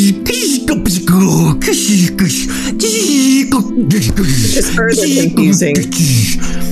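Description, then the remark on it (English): A voice imitates a metallic mechanized suit whirring, humming and buzzing as it lurches forward, a loud, continuous droning with wavering pitch glides and hissy, breathy bursts throughout, unbroken for several seconds. “As you guys are kind of talking, you hear just like this whirling, humming, buzzing sound, like...”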